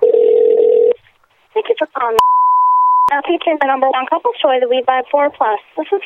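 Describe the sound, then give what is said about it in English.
A steady telephone line tone of a call to a shop hums for about a second, then voices talk, broken by a single sharp, clean beep lasting roughly a second, before the talking resumes. “I'm …, and I gotta make a phone call.”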